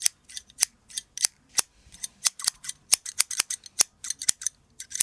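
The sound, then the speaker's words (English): Scissors snip through the hair on top of a man's head during a haircut, quick, irregular bursts of dozens of crisp cuts with short pauses between clusters, and no voices. “Clippers on the side, scissors on the top.”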